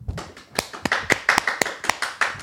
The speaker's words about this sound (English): Hey! Congrats, round of applause.